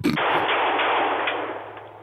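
A single loud gunshot with a sharp crack at the start, followed by a long, broad rumbling decay that fades slowly over about two seconds. No one speaks.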